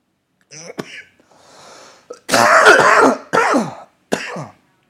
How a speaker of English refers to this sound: Hear my wife out there. She's probably like listening in there, coughing, little baby.